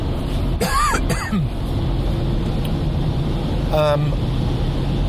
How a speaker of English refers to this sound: I have a tickle in my throat. I'm going to cough in a second.